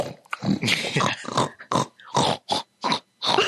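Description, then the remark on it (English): A pig grunts and snorts, starting with a long run of rough, raspy grunts and breaking into several short, separate snorting bursts toward the end. “I liked when the pig was like...”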